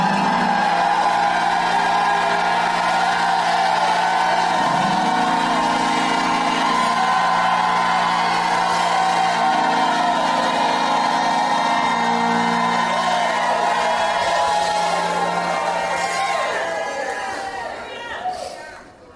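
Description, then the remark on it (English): A church audience erupts in loud, sustained shouting and cheering from many voices, shouting with victory, with steady instrumental tones underneath, the roar holding for most of the time before fading out at the end. “Now, if you believe it, set the Bible down and shout with the victory like you've never shouted in your life.”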